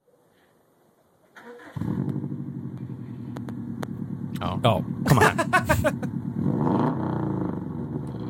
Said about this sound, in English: Oh, it's so good. It sounds great. Gun it. Little pop. I don't think he's ever going to gun it. We're just revving. It's too easy. All right, what do we think? It's obviously a BMW M3.